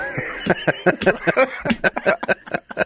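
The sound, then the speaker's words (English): A dog coughs and hacks in a rapid string of short, harsh bursts, moderately loud, with no talking over it. “Sorry, my dog's coughing.”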